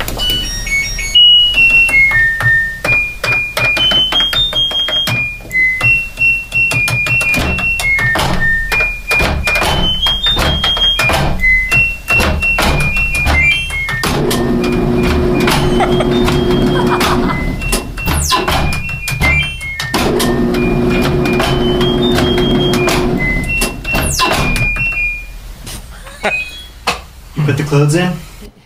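Two men play a washing machine like an instrument: rapid high electronic button beeps step up and down in a bouncy pop melody, punctuated by door clunks and thumps, with stretches of low droning motor hum underneath.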